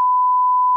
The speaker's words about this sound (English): I'm beeping that out.